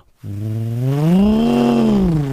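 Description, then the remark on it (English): A person vocally imitates a car engine revving as the driver hits the gas on wet grass and the car does not move: one loud, buzzy drone that rises in pitch, holds, then sinks back down over about two seconds, with no other sounds. “Like, all you could hear was the engine go.”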